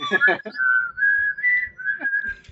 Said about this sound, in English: And I will whistle the X-Files theme song now.